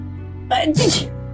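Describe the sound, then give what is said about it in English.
A single sharp sneeze bursts out, a quick breathy build-up followed by an explosive release, then quiet over a low steady hum. “Bless you.”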